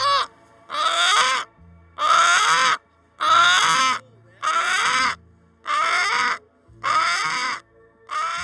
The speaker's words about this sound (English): As we do this, chickens hop by. Brahmas, Americanas, mixed breeds. They seem utterly uninterested in us. They cluck at each other.